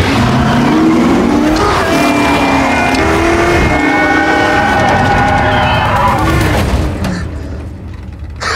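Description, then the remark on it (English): A Ford GT race car engine roars loudly, revving with rising and falling pitch as tires squeal, the sustained howl easing off near the end. “That's the Ford GT.”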